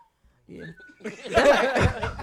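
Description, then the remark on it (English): A brief, thin whistle rises for a moment, then a group bursts into loud laughter and excited chatter, drowning everything else out. “Look, that's y'all fifth whistle on me today. Y'all done whistled me all day.”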